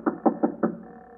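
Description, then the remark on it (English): Four firm knocks on a door in quick, even succession, fairly loud, then silence with no voices. “I ran into a corner and hid when I heard them knock on my door.”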